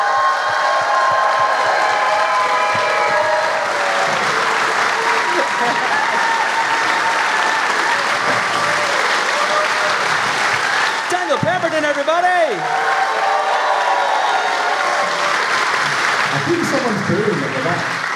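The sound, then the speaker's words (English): A large audience applauds loudly and steadily as a musician is welcomed, with cheers in the crowd and a drawn-out booing voice rising above the clapping partway through. “I think someone's actually booing.”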